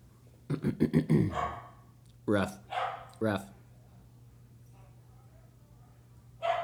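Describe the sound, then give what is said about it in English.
A person imitates a dog barking: a quick flurry of rough woofs, then a few separate barks spaced apart, over a steady low hum. “Rough. Bark. Rough. Bark.”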